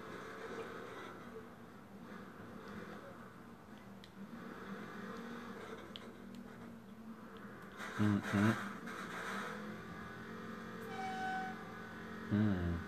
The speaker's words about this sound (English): Somebody's brakes are bad.